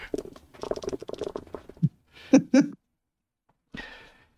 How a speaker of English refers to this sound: All right, I'm gonna roll my 10d6 then.